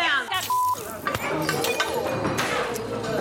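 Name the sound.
glass shattering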